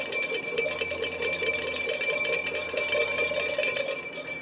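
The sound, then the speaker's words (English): A bell is rung twice, loudly, its bright metallic tone sustaining steadily throughout with a dense shimmer of overtones and no voices. “It's a Two Bell Tuesday.”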